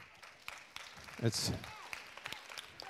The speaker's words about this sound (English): It's great that your parents are applauding. I think that's fantastic.